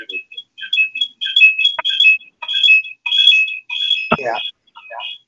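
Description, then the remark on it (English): A fire alarm blares with rapid, piercing electronic beeps repeating in quick bursts, loud and continuous throughout, with a brief voice briefly cutting in near the end. “Fire alarm.”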